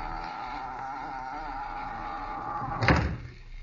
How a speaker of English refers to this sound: Come on in. Shut the door.